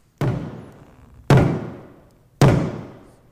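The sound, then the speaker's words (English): Three heavy hammer blows land at a slow, steady pace about a second apart, each a loud, sharp thud that rings out and fades before the next strike. “John, you may want to stop the hammering. Stop the hammering!”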